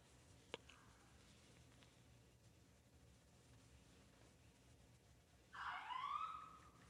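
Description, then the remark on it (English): An ambulance siren wails in suddenly near the end, a short, loud sweeping tone over a quiet background hum, with a brief faint tone and a sharp click earlier on. “I guess that's our call, the ambulance.”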